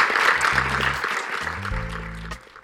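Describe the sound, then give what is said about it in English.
An audience at a Galway International Arts Festival talk claps steadily in a dense, continuous wash of applause for three women speakers, with low sustained musical tones rising beneath it before the clapping thins out at the end. “let's give them a huge, huge round of applause.”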